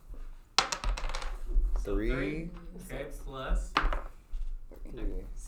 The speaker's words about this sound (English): I'm gonna roll one dice. Times two. Times two. One dice twice.